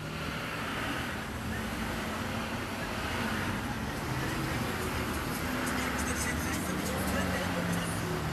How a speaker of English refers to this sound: Cars are passing by with music playing that I don't recognize who these people are anymore. I'm out of the loop, kid.